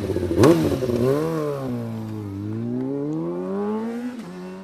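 Racing motorcycles roar past at high speed on a road course during the Skerries road race as it resumes, engines whining loudly and shifting pitch as they sweep by one after another, the howl rising and falling without a break.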